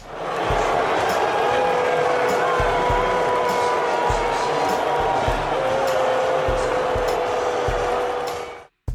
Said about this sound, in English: That was a whole stadium of people booing, and I was making a joke.